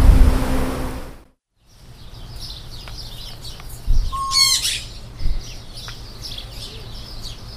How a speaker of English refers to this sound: In the back of Robert is here, there's an aviary with lots of birds in it. Lots of children visit the fruit stand with their families, so this gives them something to do and something to look at.